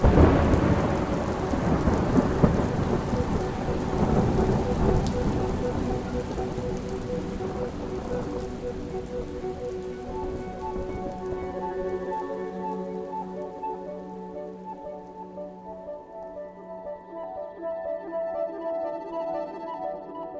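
At an outdoor event with a crowd and stage lights, a loud rumble of thunder over steady, hissing rain opens as a very large storm passes through, the storm gradually easing as sustained musical tones swell up and carry on beneath the lingering rainfall.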